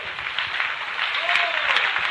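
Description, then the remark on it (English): An audience at a church service applauds for the Lord steadily, a dense wash of many hands clapping at once that holds at an even, fairly loud level throughout, with a brief faint whoop rising over it midway. “Why don't you put your hands together for the Lord?”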